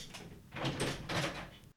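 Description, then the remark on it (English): A door is pulled open with a rough scraping, rattling sound in two broad bursts, moderately loud, with no one speaking. “I got to open the door here for the rules guy.”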